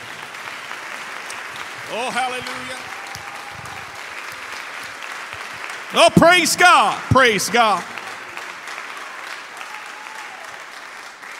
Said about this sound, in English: Hallelujah, hallelujah. Why don't we clap our hands to the Lord?